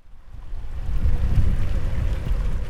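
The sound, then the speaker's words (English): Blustery wind and rain from Tropical Storm Hilary over San Diego County roar steadily with a heavy low rumble and buffeting gusts, a constant rushing wash of noise with no voices. “Tropical Storm Hilary brought rain and blustery conditions as the swirling mass of clouds rolled over San Diego County.”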